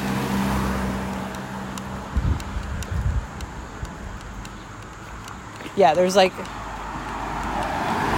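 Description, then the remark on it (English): Steady road noise from traffic on a road with no sidewalk, with a car rumbling past early on, mixed with wind buffeting the microphone on a windy day; a person speaks briefly near the middle. “There's no sidewalk, and we're right on the road.”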